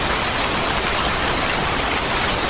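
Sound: heavy downpour of rain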